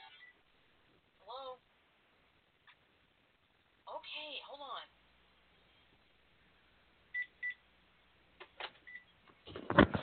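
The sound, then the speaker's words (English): A phone beeps with an incoming call: a few short, clipped electronic tones spaced a couple of seconds apart, mixed with brief bursts of voice over a thin, telephone-like line. “Uh-oh, hold it, phone.”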